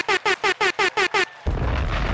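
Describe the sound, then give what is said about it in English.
Seven quick, evenly spaced buzzy electronic beeps, then a sudden loud explosion bursts in with a deep, rumbling roar that carries on to the end. “Claps for y'all for blowing the shit up.”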